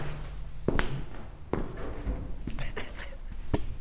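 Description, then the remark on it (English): A few distinct footsteps of men's dress shoes land on a hard bathroom floor, spaced unevenly, each a short sharp knock over a steady low background hum, coming to a stop in front of a stall. “Suddenly there are footsteps in the bathroom.”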